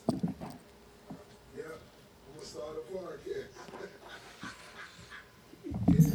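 A dog pants and lets out a run of high, whiny whimpers, with louder rustling bumps at the start and end.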